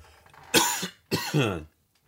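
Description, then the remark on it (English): Two loud coughs in quick succession, the second longer and rougher, with a brief pause between them and no talking. “Excuse me. I don't have a cough button.”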